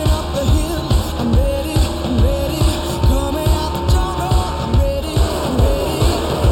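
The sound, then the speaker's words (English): A pack of Cup stock cars roars around a racetrack as the green flag goes up to start the race, their loud, continuous engine drone swelling and pulsing as the cars pass by, with no voices over the noise. “Cup cars on the racetrack. The wait is over now. The green flag goes in the air.”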